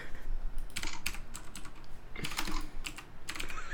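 Quick, irregular typing on a computer keyboard while googling, a run of sharp clicky keystrokes with short pauses between bursts, heard on its own without any voices.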